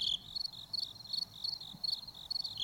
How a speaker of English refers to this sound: I was hoping some crickets find their way into there. Yeah, there'll be some crickets.